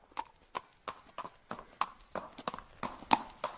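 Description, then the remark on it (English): Zebra hooves clip-clopping at a steady walking rhythm, a dozen or so sharp, hollow knocks on a hard surface, with no voices. “But what if I told you that the correct answer is zebra and not a horse?”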